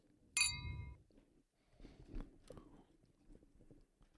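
A single bright, loud clink of glasses touching in a toast, with a short ringing tone that fades quickly, followed by quieter rustling and crunchy handling noises.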